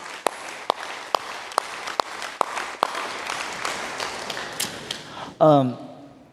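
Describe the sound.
A crowd applauds steadily, a dense wash of clapping punctuated by a few sharp, louder individual claps, before a voice briefly cuts in near the end.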